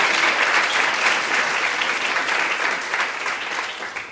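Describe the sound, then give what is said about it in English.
A crowd applauds the women's leadership team steadily with dense, crackling hand claps that hold at a fairly loud, even level for several seconds before easing off slightly at the end. “Can we give them just a round of applause?”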